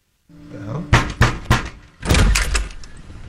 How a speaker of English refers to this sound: When you become aware of red and blue flashing lights outside, and then the bang comes on the door.